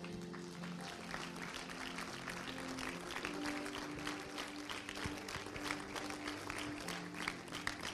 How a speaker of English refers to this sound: You've been a great crowd. Would you give him a big hand clap?